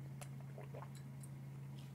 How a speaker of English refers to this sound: Okay, let me take a sip of the extra spicy, extra saucy.